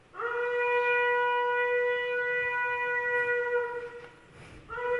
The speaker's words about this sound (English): Ram's horn. I had to find a trumpet player who could do that. And it's a lot harder than playing a trumpet.